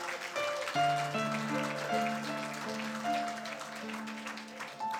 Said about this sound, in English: Yeah, come on, you can clap that.